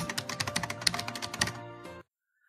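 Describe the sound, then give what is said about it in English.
Rapid clicking of keys on a computer keyboard, a quick irregular burst of keystrokes over a steady background hum, stopping abruptly after about two seconds. “Some of the words that's what I was typing up.”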